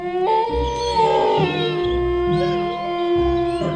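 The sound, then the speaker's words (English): Several wolves howl together in a chorus of long, overlapping, wavering tones that rise and slide in pitch, loud, with no talking. “Okay, thank you, wolves.”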